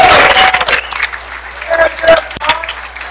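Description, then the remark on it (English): A church audience claps for the youth group in a dense, steady burst that thins after the first second into scattered claps, with a few voices and faint tonal notes mixed underneath. “All right, give these guys a hand.”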